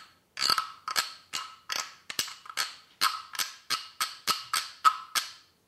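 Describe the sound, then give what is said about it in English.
A wooden frog from Thailand is scraped back and forth with a wooden stick along the serrated sawtooth edges on its back, giving a steady series of about a dozen loud, rasping croaks in an even back-and-forth rhythm, with no voices. “This is a wooden frog from Thailand. And you play it with a wooden stick by scraping it back and forth on the serrated sawtooth edges on its back.”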